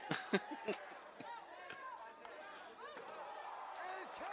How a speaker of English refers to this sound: Fucking chair shot to the head. Woo, what a chair shot.